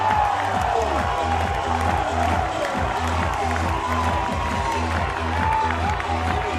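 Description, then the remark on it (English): A large baseball stadium crowd on senior day cheers and applauds after Brock Hale's home run out of the stadium ties the score 4-4, a loud, steady roar that never lets up, with a rhythmic low thumping pulsing underneath the whole time. “You can hear the crowd.”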